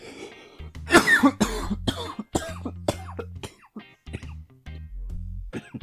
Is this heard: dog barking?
no